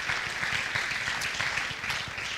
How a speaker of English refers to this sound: Oh, clap your hands and praise him, everybody. Respond to the call of God.